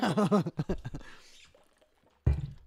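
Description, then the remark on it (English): Quiet liquid sounds: a short pour of water and a few swallowing gulps, fading into near silence before a sudden sharp noise at the end. “Water break.”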